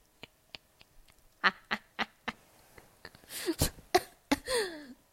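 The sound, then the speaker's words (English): A coughing fit from a dry throat: a few small dry hacks, then a run of harsher coughs building into rapid, raspy, strained bursts with wheezy voiced catches, no talking. “I just had like a coughing fit.”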